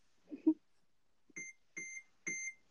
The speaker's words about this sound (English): That sounds like my microwave. When it stops.